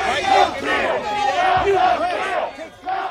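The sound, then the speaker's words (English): A large outdoor crowd in the streets of the United States cheers and shouts in celebration after Joe Biden was projected to become president, voices overlapping in a loud, continuous roar with rising whoops and chants, dipping briefly before swelling again. “Some people celebrating, cheering, honking, literally dancing in the streets.”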